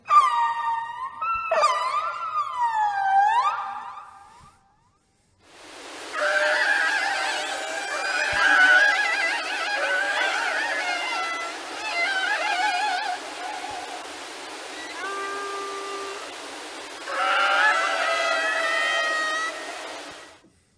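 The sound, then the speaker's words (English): Orca whale calls: a series of high, squealing, harmonic whistles that rise and fall in pitch, some wailing and honk-like, over a steady hiss of water noise, with no talking. “So what I'm going to do is I'm going to play some nice, beautiful orca whale sounds”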